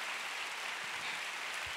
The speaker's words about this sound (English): Come on, let's give God a big clap. Totally healed in the name of Jesus.